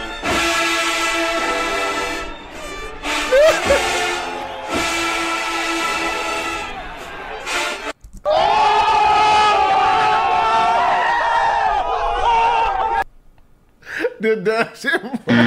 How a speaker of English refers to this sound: I want to hear the crowd reaction to this. Hold look, let's go back. Hold look. Listen to this crowd reaction.